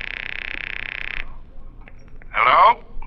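A telephone rings with a high, buzzing trill that lasts about a second, stops, then returns as a shorter, warbling burst. No voices are heard.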